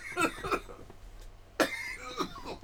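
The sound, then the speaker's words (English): A person coughs several times in harsh bursts: two quick coughs, a pause, then a louder sharp cough followed by a smaller one, with no talking. “You cough, you get off, man.”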